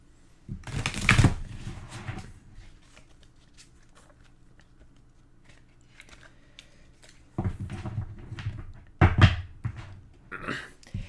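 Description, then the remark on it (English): A deck of cards is shuffled in two bursts, each a rapid papery riffle with a crisp flutter, separated by several seconds of quiet handling. “So you shuffle the deck, which I will do here.”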